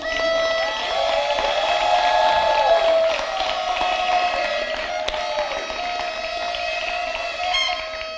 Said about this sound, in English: So if you're a missional community leader, we just want to honor you, celebrate you real quick. Would you stand up? Would you just stand up for us real quick? And we're going to blow our horns and root and clap.